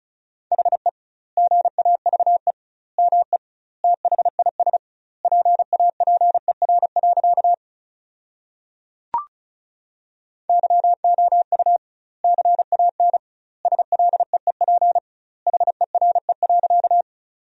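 Rapid Morse code beeps at 35 words per minute with doubled word spacing, sending sentences made from the 500 most common words, in a single steady mid-pitched tone, keyed in quick bursts with short pauses between words and one sharp click near the middle. No voices.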